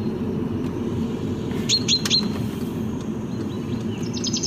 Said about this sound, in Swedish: Sädesärla. Han går upp på slutet. Han, det kan ju vara en hon. Ja, en hen. Bofinken är det. Ja, bofinken. Jo, men det är typiskt på slutet. Mm. Vad duktig han är. Där går han upp.